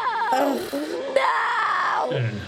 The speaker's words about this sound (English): And it is the nearly deafeningly loud, blood-curdling scream that Gabe lets out before he goes completely limp in Nek's arms.